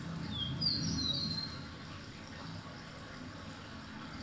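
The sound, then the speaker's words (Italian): Birdsong recorded in a forest in Colorado toward the end of a thunderstorm, a few high, bright whistled chirps early on over a steady low rumble and soft wash of ambient noise that continues after the calls fade. “Sono dei suoni che sono stati registrati in un bosco.”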